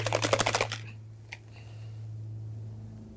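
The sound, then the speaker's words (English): A bottle of whiskey is shaken briskly, a rapid run of about nine sloshing pulses lasting under a second, followed by near quiet, one small click and a low steady hum. “So what happens when you shake mine? Is this rolling the dice here?”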